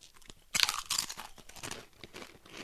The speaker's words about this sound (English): Loudest crunch on earth, thanks to my jaw. Actually tastes like a Dorito.